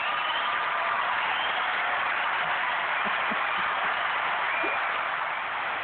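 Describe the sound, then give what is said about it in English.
Steady, dense applause from a crowd fills the whole stretch at an even, fairly loud level, a continuous wash of many hands clapping with no voices over it. “The claps never get old.”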